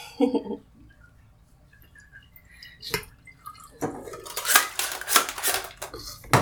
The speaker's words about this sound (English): So I'm pouring in my developer. And as soon as it's all in there, I'm gonna do two quick inversions. Knock it on the counter. And then wait a whole 15 seconds to do two more.